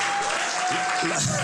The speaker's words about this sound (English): We celebrate and honor you. I like the people are just clapping.